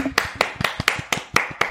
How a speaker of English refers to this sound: Chris Paul, I will give him the claps. Are you ready? We're going to give him the claps.